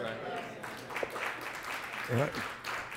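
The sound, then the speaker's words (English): A church audience claps steadily for the pastor in a dense, even wash of applause, with voices calling out over it, one exclamation rising briefly in the middle. “Yeah, I got my eye on them brothers and sisters didn't clap.”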